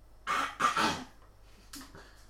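A short coughing fit: two loud, harsh coughs in quick succession, then a brief pause and a softer, weaker cough. No talking.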